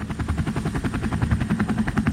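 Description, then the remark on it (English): A U.S. government helicopter taking Elizabeth Holmes from the courthouse: its rotor thuds in a fast, steady chop, loud, with a deep engine rumble beneath the rhythmic beating and no voices. “Contrary to popular news stories, she was actually taken immediately from the courthouse in a U.S. government helicopter”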